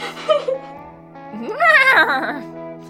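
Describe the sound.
Someone imitates a horse's whinny: a brief voiced call, then a rising, shaky, high-pitched neigh that wavers and falls away, with a steady low hum underneath.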